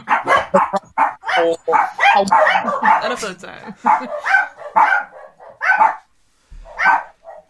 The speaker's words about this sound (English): This dog interruption is brought to you by.